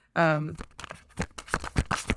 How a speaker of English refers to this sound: For those of you who know how I shuffle, you will hear the cards because I shuffle really fast.